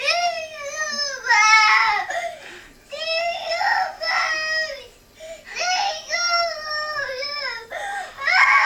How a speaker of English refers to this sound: So to give your brains a visual for this meme, there is a little toddler who's just kind of losing her shit on the couch. And this is what she's saying.